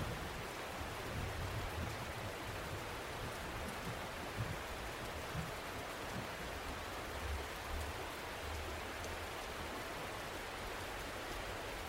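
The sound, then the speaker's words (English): Steady rain falls in a continuous, even hiss with a soft low rumble underneath, holding a constant moderate level throughout with no voices. “Does the sound of the rain stay the same or does it change?”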